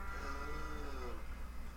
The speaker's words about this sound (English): Where did those cows come from?